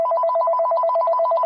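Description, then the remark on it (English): A mobile phone rings in a hospital with a fast, warbling electronic trill that alternates between two tones, loud, holding steady throughout with no voices present. “And after some time, my mobile phone rang.”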